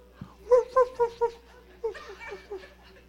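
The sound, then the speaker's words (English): A person imitates a dog barking: four quick, evenly spaced yelps, followed by a looser run of softer, drawn-out barking sounds. “But anyway, anyway, he told that woman, he said, get on one foot and bark like a dog.”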